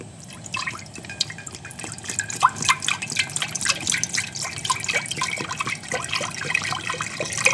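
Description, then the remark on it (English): Four cups (a quart) of chicken broth pour steadily into a pot, a continuous splashing and gurgling with bright, sputtering drips scattered throughout, moderately loud and without any talking. “Add the chicken broth. So we have 4 cups of chicken broth going in here, which is the quart.”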